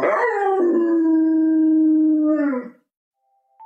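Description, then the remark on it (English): A dog lets out a single long, sustained howl that holds a steady pitch for over two seconds before breaking off, loud, followed by a brief faint tone. “So, what do you think, Chuck? Do you approve?”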